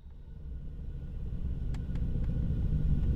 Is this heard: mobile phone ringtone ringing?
no